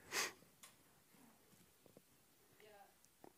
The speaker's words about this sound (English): I got to blow my nose since everybody else has been blowing their nose for the last 10 minutes.